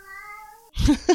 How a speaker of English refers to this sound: Did you hear... Did you hear my cat? Cat was like, bye. Yeah. Bye, cat. Cat says bye.